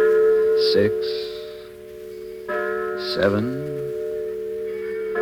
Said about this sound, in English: He shifted and looked across the yards at a signal light, and I heard the tolling of a church bell. I remembered then that the day was Sunday, Evening services were about to begin, and the bell was ringing out the time.